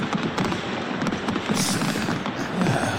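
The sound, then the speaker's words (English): Fireworks crackle and pop without a break, a dense wash of hissing bursts broken by several sharp bangs, holding at a fairly loud, even level with no talking. “There's my fireworks.”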